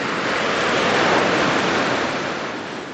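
Mediterranean Sea waves break on a shore at Al Hoceima, Morocco, in a steady, loud rush of surf that swells to a peak and then slowly eases off as the water recedes, with no voices present.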